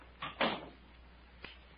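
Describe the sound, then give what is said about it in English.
A ship's stateroom door swings shut with a brief scraping sound and a louder thud, followed by a quieter click a second later; no voices. “Close the door, Captain.”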